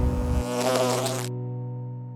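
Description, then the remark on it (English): A steady drone of bees buzzing, with strong harmonic hum that sustains throughout; a brighter, raspier edge fades out partway, leaving a smoother continuous buzz. No voices. “Don't spend time with bees. I do not want to make the bee people mad. Get 'em, girls.”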